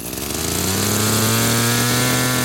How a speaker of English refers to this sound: uses a gas-powered drill to make holes that are about 1.5 inches deep.